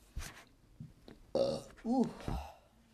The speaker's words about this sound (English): Let me burp.